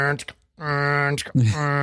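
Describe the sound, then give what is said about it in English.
A voice imitates a dot matrix printer printing on perforated green band paper, with loud, buzzy droning tones: two long sustained passes broken by short clipped bursts, like the print head sweeping back and forth. “Spot that on impression, by the way.”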